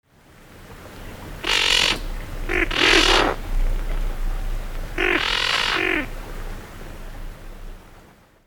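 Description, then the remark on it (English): A band-tailed pigeon gives three harsh, raspy guttural calls, the first two close together and the third after a short pause, clear over a steady low background rumble. “They also have a guttural call, which sounds like this.”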